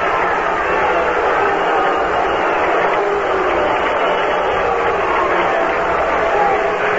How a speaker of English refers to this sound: Seaver getting booed here by the San Francisco fans for his part in beating Ron Hunt.